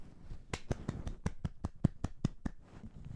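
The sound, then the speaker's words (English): One person holding a microphone claps about a dozen times in a quick, steady rhythm, each clap sharp and fairly loud, then stops; no one speaks, only a low background rumble remains. “Lovely solo round of applause there. It's hard to clap and hold a microphone.”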